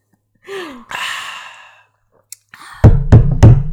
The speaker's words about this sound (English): Oh, classic banging on the table. I bet you missed that, everybody. Yeah. Oh, my God. Early days. It's like, how did we not know that, like, banging both hands on the table, both palms down, was not okay?